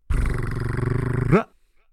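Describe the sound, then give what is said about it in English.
A voice imitates a drum roll with a loud, rapidly fluttering trill lasting just over a second, ending in a quick rising flourish before cutting to silence. “Number five, if you want to give me a drum roll, please.”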